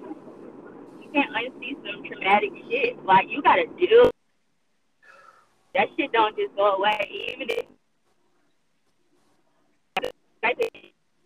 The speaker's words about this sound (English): Somebody's phone messing up. Yeah, that's probably her. She going through a tunnel or something.